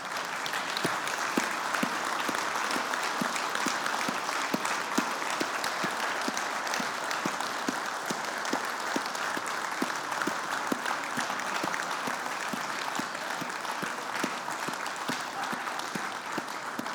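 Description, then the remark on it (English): A large crowd applauds steadily throughout, dense sustained clapping from many hands at a fairly even level with no voices standing out, as the men stand to applaud the women on Mother's Day morning. “Men, will you stand and will we applaud our ladies this morning?”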